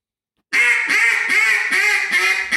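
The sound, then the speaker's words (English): After a short silence, a person imitates five different duck calls with five loud, raspy quacks in a quick, steady run. Each quack is nasal and buzzing, and there is no talking. “Okay, so there's five different ducks right now.”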